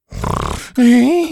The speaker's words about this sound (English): there must be something that will put a stop to that hideous snoring. Why do you do it?